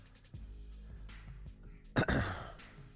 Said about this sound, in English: Sorry, I've got so much congestion. I'm clearing my throat like every other second.